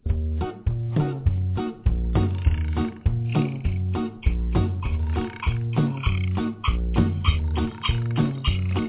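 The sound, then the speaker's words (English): A bouncy, steady-beat children's song about frogs and a lily pad, with repeated croaking frog sounds woven into its rhythm, played loud. “doing his song about frogs in his lily pad.”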